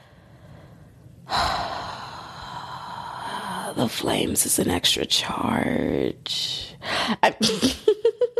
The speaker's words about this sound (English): I'm pretty sure, like, that heavy breath, y'all were like, what's happening?